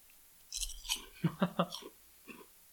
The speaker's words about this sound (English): I'm just munching on turtle chips waiting for John to do this.